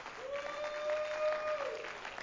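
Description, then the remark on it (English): An audience claps its hands in steady, dense applause for about two seconds, giving praise to the Lord, with a single sustained musical tone held underneath the clapping. “In Jesus' name, would you clap your hands and give praise to the Lord?”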